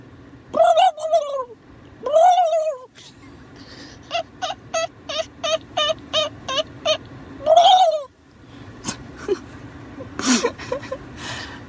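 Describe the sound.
A person imitates a turkey by voice: wavering yelps, then a quick run of about nine short, evenly spaced clucks, another yelp, and a few sharp, higher calls at the end.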